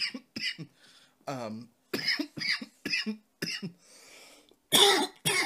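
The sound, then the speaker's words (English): A person who has just smoked has a fit of harsh coughing: a rapid series of loud hacking bursts with a brief raspy, strained breath partway through, ending in one last forceful cough. “So I will be coughing a lot unless we're eating edibles.”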